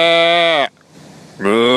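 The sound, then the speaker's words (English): A sheep bleats twice, loud, each call a long wavering baa separated by a short quiet pause. “You don't hear cows. You don't hear sheep.”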